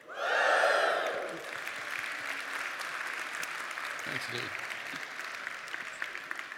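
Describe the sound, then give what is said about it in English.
An audience at a church teaching on Philippians lets out a loud, high whoop for about a second to welcome a speaker up, then breaks into steady, sustained clapping that carries on to the end, with a brief spoken thanks under the applause. “Yeah, we're going to give him a woo, and then we're going to clap.”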